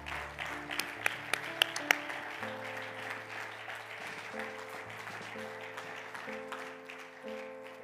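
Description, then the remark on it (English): A large crowd claps together in steady, sustained applause to honor the ladies, with held organ-like chords playing underneath and a few sharp, louder claps standing out near the start. “Will we clap our hands together?”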